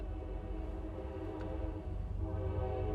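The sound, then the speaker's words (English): A passing train's horn honks in one long, steady chord-like tone for the whole stretch, loud, swelling slightly toward the end with a low rumble underneath. “Dude, can you hear this train? There's a train coming by!”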